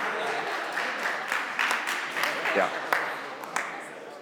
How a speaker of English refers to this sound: Forced clapping, just it rings hollow. It just rings hollow.